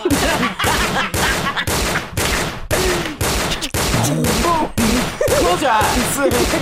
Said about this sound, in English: Do we have a gun sound to play?